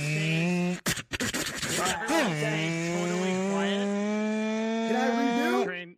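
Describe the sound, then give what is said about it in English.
A voice imitates a Formula 1 engine with a loud, buzzy, high-pitched whine that breaks off briefly, swoops down and back up like a gear shift, then holds a steady wavering drone. “You've obviously never heard what an F1 car sounds like. Yeah, F1's like this.”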